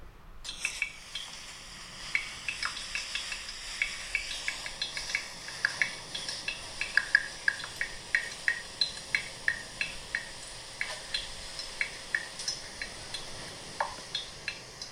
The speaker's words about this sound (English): This is my kitchen sink from a couple of days ago. It made some amazing music.